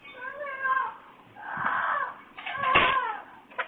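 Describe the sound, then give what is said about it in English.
A man's pet parrot screeches in three harsh, wavering bursts that sound much like a woman screaming for help. The cries rise and fall in pitch, with a short sharp knock near the end. “It does sound like a lady screaming for help, doesn't it? It was the fellow's parrot.”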